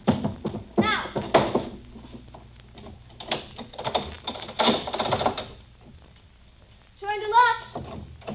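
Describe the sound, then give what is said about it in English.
Clunks, taps and metallic clicks in irregular bursts as the locks of a door are worked, then a short high squeal near the end as a heavy chair is moved out of the way, scraping across the floor. “Now, you have to move that chair out of the way so he can get at the locks.”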